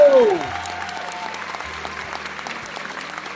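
A crowd applauds steadily for a few seconds, dense clapping filling the sound after a brief falling whistle-like tone at the very start, with faint cheering mixed in.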